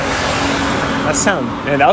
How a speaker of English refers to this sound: That car didn't sound good.